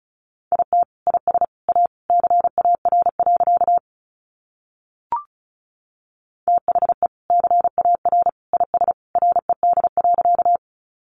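Fast Morse code at 35 words per minute, sent as a single steady mid-pitched beep keyed into rapid dots and dashes. Two long runs are split by a pause broken only by one short blip, with no voices.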